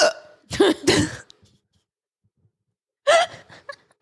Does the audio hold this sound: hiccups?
yes